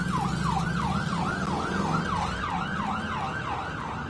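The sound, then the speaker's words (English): A police siren wails in a rapid, repeating yelp, its pitch sweeping up and down about twice a second over a low rumble of traffic, staying loud throughout with a slight fade at the end. “The popo's coming.”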